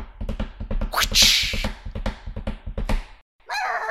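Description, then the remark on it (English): Rapid, steady thumps of a hand hitting a desk in a galloping rhythm, imitating horse hooves, with a sharp hissing burst partway through, then a short pause and a brief vocal sound. “I was just hitting the desk in front of me, but I did do a very good job, thanks for noticing.”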